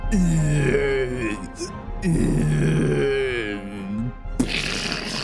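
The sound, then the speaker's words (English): A voice imitates a man with a metal arm choking as spores creep inside him after a big intake of breath. There are two long, strained, gurgling vocal bursts with wavering pitch, followed by a short rasping exhale at the end. Loud throughout. “And before he gets a chance to swing that metal arm, he chokes with this.”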